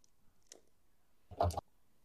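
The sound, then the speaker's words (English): A short clatter of dice rolled during a game, one soft click followed by a quick rattling burst that settles within a second, with no voices. “Roll an intuition mind on this one.”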